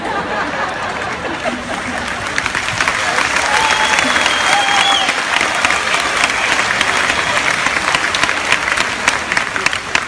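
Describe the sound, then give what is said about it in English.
Sustained applause from a large crowd at a speech fills the whole stretch, dense clapping swelling after a couple of seconds and holding steady, with a few faint cheers and whistles rising above it. “And again, this is such a terrific crowd.”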